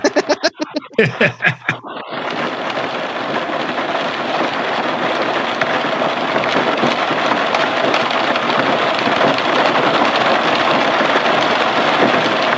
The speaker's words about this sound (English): Intermission scene. We got rain on a car roof. Oh boy.